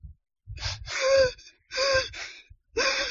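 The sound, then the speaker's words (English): Three loud, gasping breaths drawn in one after another, each a harsh airy rush with a slight voiced, wheezy edge, separated by brief silences. No one speaks. “All right, I need you to take a deep breath for me, okay?”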